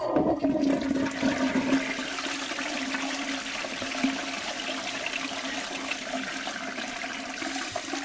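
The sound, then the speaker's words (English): A toilet flushes, a loud rush of water that starts strong and then settles into a steady gurgling swirl for several seconds, with no voices. “Flushing it right down the toilet.”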